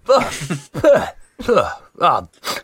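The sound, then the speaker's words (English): A voice imitates Treble sneezing as he gets comfortable in his cage: five short voiced bursts with a falling pitch, coming in a steady rhythm about half a second apart. They are fairly loud, with no other talk. “When Treble gets comfortable in his cage... He sneezes.”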